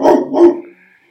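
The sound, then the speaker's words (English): Two quick, loud barks from a dog in rapid succession, then a brief fading tail of background noise; no one speaks. “Okay, a barking dog causes me to lose my place.”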